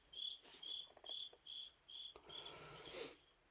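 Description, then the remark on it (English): A lone cricket chirps in a steady, regular rhythm, about six high-pitched trills in quick succession, fairly soft against a quiet background with no voices. “Oh man, that cricket.”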